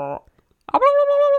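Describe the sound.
A person vocally imitates an adult animal's warble, a call made to warn off predators and potential mates. It is a short voiced burst, a pause, then a sustained, mid-pitched, slightly wavering tone held for under a second, fairly loud and alone.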